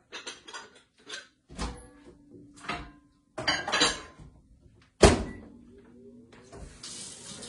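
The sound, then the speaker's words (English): Clatter and clicks, then a firm thunk as a microwave door shuts, followed by a few short tones and the steady whirring hum of the microwave running as it heats Velveeta cheese sauce. No one speaks. “Let's microwave this.”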